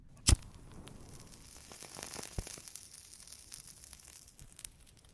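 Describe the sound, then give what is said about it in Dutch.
A cigarette being lit: a sharp, bright strike at the start, like a match or lighter catching, followed by a soft crackling hiss and faint sizzling that continues for several seconds with no talking. “Het aansteken van een sigaret.”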